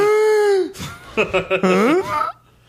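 An exaggerated, theatrical gasp drawn in by a voice, stretched out over about two seconds with a wavering, sliding pitch that breaks into a whiny, almost moaning tone before cutting off.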